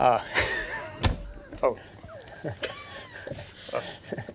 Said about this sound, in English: Stop banging on the table. All right, I'm still thinking it's a drum.